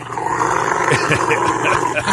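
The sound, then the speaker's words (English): A Rottweiler growls and grumbles in low, rumbling bursts while a man gives it a bath, fairly loud, with a steady wash of background noise like running water underneath. “Next one's a guy giving his Rottweiler a bath.”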